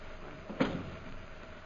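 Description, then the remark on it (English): A single soft thump of a door opening or closing, brief, with a faint hiss in the background and no talking. “Open the door”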